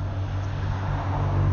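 A car rumbles by on a hairpin road in a national park, its low engine and tire noise steady, swelling slightly toward the end with no voices.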